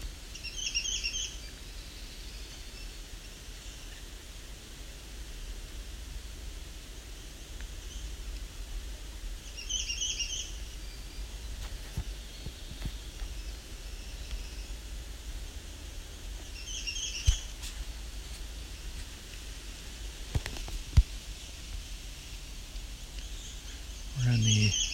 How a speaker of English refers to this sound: Extreme southern range of the Swainson's thrush, Swainsoni subspecies.